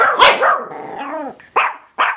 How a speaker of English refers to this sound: I'm like, fam, doggy, relax. This dog started growling and barking at me. It wanted to attack.